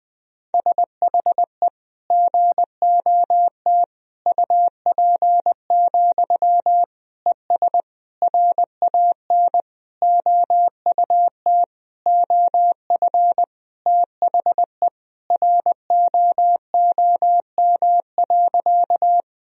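A single steady mid-pitched tone keys on and off in rapid Morse code, sending practice sentences of common words and abbreviations, short dits and longer dahs grouped into words with brief gaps, running continuously at a brisk 20 words per minute.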